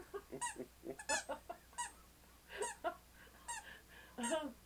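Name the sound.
squeaky toy squeaking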